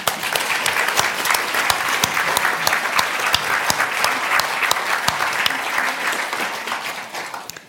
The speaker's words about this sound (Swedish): Tack. Vi klappar.